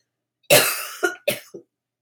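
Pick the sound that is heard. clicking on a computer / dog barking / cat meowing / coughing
coughing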